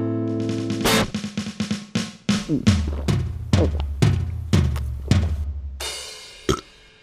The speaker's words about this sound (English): Wasn't that nice and sloppy? Did you do the burp in real time?